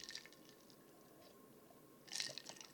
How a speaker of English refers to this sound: Excuse me. Let me take a sip. Let me take a sip, guys.